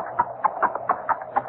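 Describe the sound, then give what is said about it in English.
Hooves of a horse drawing a wagon clop along in a steady, even rhythm, about seven hollow knocks in under two seconds. The sound is fairly soft and there is no talking. “That horse is no recording.”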